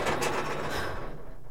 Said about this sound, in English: No bashing my head in when I open the door, okay?